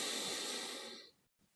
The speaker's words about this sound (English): And then you might sort of bring more attention to breathing in and having the same amount of time breathing in as breathing out. So balancing your breath, if you see what I mean. So just breathing in, sort of counting to 5, for example.